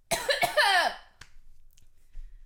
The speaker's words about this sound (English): Gage is going to hate editing this bit because I keep having coughing fits.